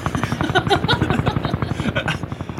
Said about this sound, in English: Anyway, right, we're here, and what's that outside? Is that a helicopter landing? Oh, my God. It is, isn't it?